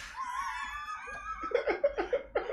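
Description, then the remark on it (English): A rubber shouting chicken toy lets out a long, strained, rising screech followed by a series of choppy, wheezing squawks as it is squeezed, loud. “This will teach you. The shouting chicken!”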